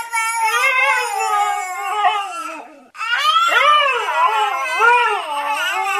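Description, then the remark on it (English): A husky lets out a long, steady howl, then after a brief gap a baby wails back in a rising and falling cry, the two imitating each other and sounding alike. Both are loud, with no talking. “The top 3 coming up after the husky and the baby go at it imitating each other again.”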